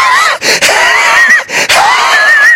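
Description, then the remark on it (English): A big black bear gasping and huffing after eating Tabasco-drenched M&Ms: three loud, strained, wheezy breaths in quick succession, each carrying a squeaky, whistling tone over rough breathy noise, with no talking. “The big old thing started gasping and huffing his darn full head off.”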